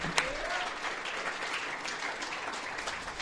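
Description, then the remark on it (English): A room full of people claps steadily, the dense patter of applause holding at an even level for a few seconds, with no talking over it. “That's a very good thought, and let's give them a round of applause for that.”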